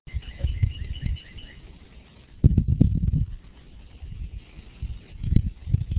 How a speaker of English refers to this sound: I love the birds in the background